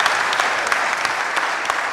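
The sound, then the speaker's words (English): A church audience applauds to receive new members from a sister church, many hands clapping in a dense, continuous wash of crisp, bright claps at a fairly loud, even level with no voices rising above it. “And if you received them, would you say amen, clap, do whatever you want to do?”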